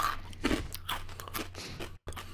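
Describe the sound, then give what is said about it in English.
Crunching of a crisp pizza-flavored wheat snack in small cubes being chewed, several sharp, brittle crackles in quick succession, with a brief silent gap near the end. “I like how we decided everyone needed to hear the crunch this week.”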